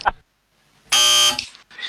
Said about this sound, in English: Oh, that's a buzzer.